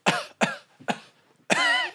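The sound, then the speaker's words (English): A voice imitates coughing: three short, sharp coughs in quick succession followed by a longer, strained, rasping one, fairly loud with no other talk. “But I can hear coughs, you get me?”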